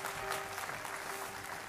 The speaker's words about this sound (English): Give the Lord a clap offering if you would.